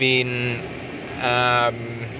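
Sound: car interior driving noise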